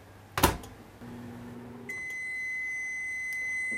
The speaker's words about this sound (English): Okay, here's the one part. We're going to put it in the microwave, cook it on high for 1 minute.